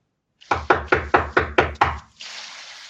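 A rapid series of about eight firm knocks on a door, each a loud, evenly spaced thud, followed by a soft, steady hiss. No one speaks.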